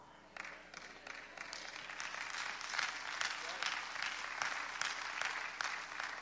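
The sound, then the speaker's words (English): Scattered hand clapping, about four or five people, from a small church audience during a sermon, uneven and fairly light, rising after a brief quiet moment and continuing steadily for several seconds before tapering. “I got 4 or 5 hand claps.”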